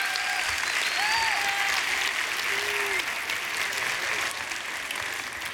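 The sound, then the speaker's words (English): The Heights Church audience applauds its seventh graders with dense, even clapping that stays loud for about five seconds, then eases slightly toward the end, with a few faint voices mixed in. “It's little things, like y'all applauding for them, that help them know that they are loved and they are seen by their church.”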